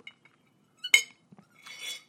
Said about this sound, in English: Can I take a little sip of water? Yes, that is a metal straw.